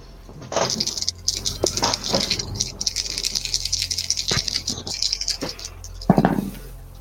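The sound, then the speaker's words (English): Dice rattle and clatter for several seconds, a steady bright rattling broken by sharp clicks, ending with a louder clack as they settle; three dice are rolled for a check, coming up 8, 12 and 8. No one speaks. “Then I would like to spend a momentum for an extra dice.”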